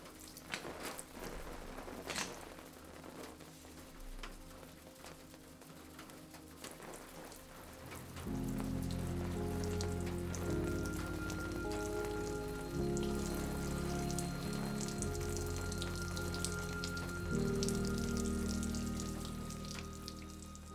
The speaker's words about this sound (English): The only sound between them was the persistent dripping of water leaking in from the roof and splashing in puddles on the floor.